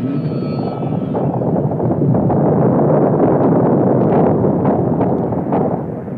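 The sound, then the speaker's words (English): A deep, loud rumble of the Good Friday 1964 earthquake in Alaska, at 5:36 p.m., roars steadily for several seconds, thick with low-end noise and scattered crackling, with a faint tonal hum at the start before it fades slightly at the end. “At 5:36 p.m., the earth begins to rumble.”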